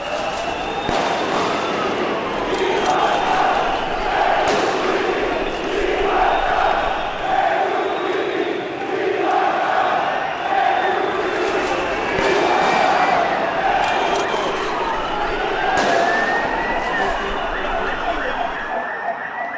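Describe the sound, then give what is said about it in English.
A street riot in Urquinaona in the centre of Barcelona: a roaring, shouting crowd under wailing sirens that rise and fall, broken by several sharp bangs like rubber bullets being fired by police, loud and continuous throughout. “Urquinaona became the centre of what was essentially a riot.”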